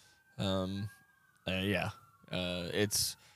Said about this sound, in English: It's just big news that I can hear the sirens going off somewhere.